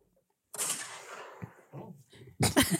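Gunshot sound effects: a loud, sharp blast with a long rumbling decay, some softer thuds, then another heavy burst near the end, punchy.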